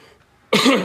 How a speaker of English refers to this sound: excuse me. I don't have a cough button on this recording device. I should find one, but on days like where I'm, I apologize. It sounds terrible.